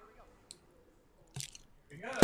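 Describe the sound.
A champagne bottle is opened: a rustle and creak of the cork working loose, then a sharp pop at the very end. Faint murmuring voices sit underneath at the start.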